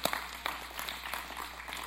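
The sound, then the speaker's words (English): A church audience claps in a loose, scattered patter during a sermon, many hands striking unevenly at once, at moderate volume with no voices over it. “If you're going to clap, clap.”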